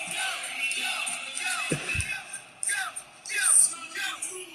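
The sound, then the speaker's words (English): A large arena crowd screams and cheers continuously as a wrestler comes out to his entrance theme, with loud overlapping yells rising in bursts over a steady roar of many voices. “The whole place goes nuts when he comes out screaming Joe.”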